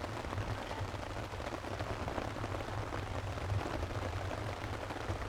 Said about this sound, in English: Just fantastic sound of heavy rain on a tarp, knowing you're safe and dry underneath it. Don't get much better than that.